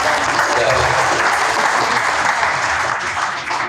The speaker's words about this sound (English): So, good job. Round of applause.